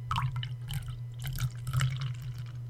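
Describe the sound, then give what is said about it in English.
Beer poured into a glass, heard as a run of irregular splashy, bubbling trickles and drips lasting a few seconds over a steady low electrical hum, with no voices. “Good old beer.”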